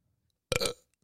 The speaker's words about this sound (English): I'm a wolf that burps.